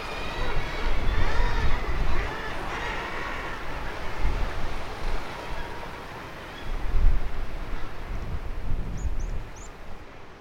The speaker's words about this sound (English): So we've reached the top of the hill, and the lighthouse building is in front of us now, painted white, the light turning gently above it. Quite a windy spot this